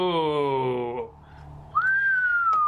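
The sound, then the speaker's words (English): A long, clear whistle given by Captain Hughes on looking at a scroll, sustained for about a second and sliding slowly downward in pitch, fairly loud, after a brief buzzy tone and a short pause. “She takes a look and gives a long whistle.”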